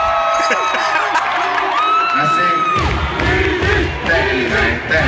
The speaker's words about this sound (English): I'm gonna need this whole crowd to get into an uproar. So without further ado, uproar.